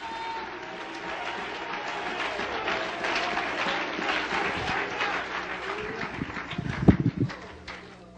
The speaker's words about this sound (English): Oh, let's clap our hands and praise him. Hallelujah.